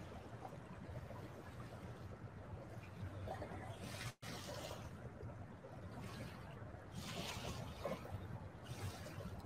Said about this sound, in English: It's beautiful here. Again, even if you're on the podcast, you're probably hearing the waves.